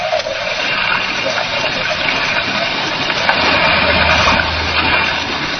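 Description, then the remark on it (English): A small fishing boat motors through a rough sea in hard wind, approaching an island: loud constant rushing and splashing of waves with a low engine drone growing steadier underneath; no voices. “as we approached the island in a small fishing boat”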